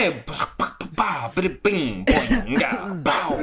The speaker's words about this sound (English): Let me just clear my throat directly into the mic as I'm one to do.